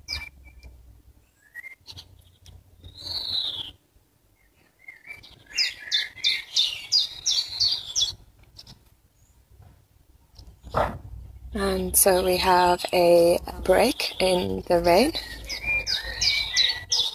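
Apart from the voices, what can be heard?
birds chirping outdoors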